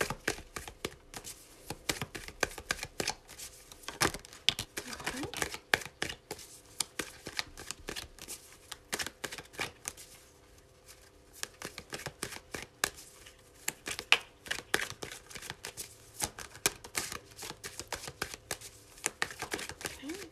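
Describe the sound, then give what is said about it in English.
A Morgan Greer tarot deck being shuffled, with dense bursts of crisp riffling and slapping taps that come in irregular waves over about twenty seconds, with no talking. “Let me get a little shuffle in there.”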